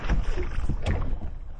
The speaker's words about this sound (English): Is that a... What is that, a rowboat? This is supposed to be rowboat sound effects.